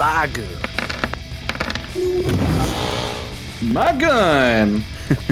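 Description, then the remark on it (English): A series of sharp, brief bangs like gunfire, scattered unevenly across a few seconds, mixed with swooping voiced tones that sound like a person vocally imitating the shots, as a player's character shoots a gun during a tabletop role-playing game. “And then I'm going to shoot my gun.”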